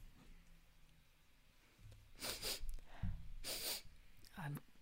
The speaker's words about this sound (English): But it's, you got nothing to hide. It's tea. Let me sniff yours.